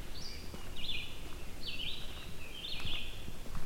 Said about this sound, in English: I kind of doubt these are the last red-eyed vireos I'll be able to record this year